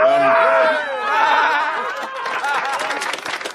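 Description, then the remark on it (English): Several sheep bleat in overlapping, wavering cries that run continuously for a few seconds, fairly loud, with a rougher, rustling noise building toward the end. “So anyway, back to Angus and those sheep.”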